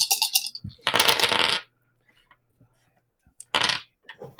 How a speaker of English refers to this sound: If you did not, oh God, make your dex roll. A lot of dice.